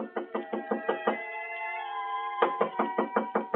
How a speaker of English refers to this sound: I had just put down the phone when someone knocked on the door.